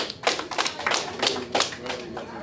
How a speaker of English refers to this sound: And I think that was everybody's favorite moment, so clap it up. That was your favorite moment of 2020. Clap that shit up.